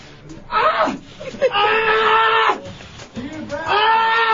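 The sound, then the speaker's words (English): A man lets out several drawn-out, strained wails and moans of pain, loud, each cry rising and breaking off before the next, with ragged gasps between them. “Why are you screaming? It's just a fruit. Just moan.”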